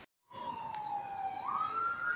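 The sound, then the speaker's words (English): A police siren wails steadily as an unmarked police car passes at Trafalgar Square, London, its tone sliding slightly up and down, fairly loud against a hum of city traffic. “That's an unmarked car going past.”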